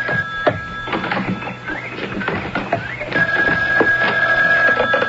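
A telephone rings with a steady electronic tone over a busy background of clicks and clattering noises, with no one speaking.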